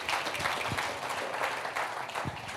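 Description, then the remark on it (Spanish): An audience applauds God together, a dense, steady wash of many hands clapping at an even loudness, with a few faint voices mixed underneath. “Vamos a darle un fuerte aplauso a Dios, ahí vamos, no lo dejen solo.”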